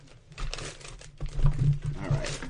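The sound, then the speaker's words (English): A bag of Spectrox is opened with loud, irregular crinkling and rustling in bursts, with a low rumbling hum underneath and no clear speech. “Yes, I'm opening up my bag of Spectrox.”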